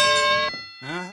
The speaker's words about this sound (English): There you go. The racist bell. The racist detector bell goes ding, ding, ding, ding, ding.